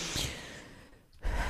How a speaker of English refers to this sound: Sorry, I don't know why I heavy breathe.